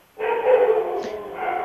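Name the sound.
dogs barking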